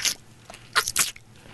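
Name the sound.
chewing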